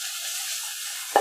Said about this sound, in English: Right, there's too much chaotic energy. Can you hear that? Can you hear the onions burning?